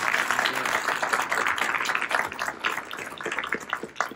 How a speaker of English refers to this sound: By the way, he traveled all the way from Japan just for this event, so please give him a round of applause for coming all this way.